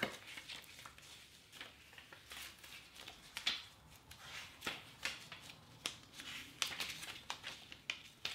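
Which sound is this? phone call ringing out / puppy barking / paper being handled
paper being handled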